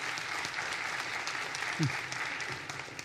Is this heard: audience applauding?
yes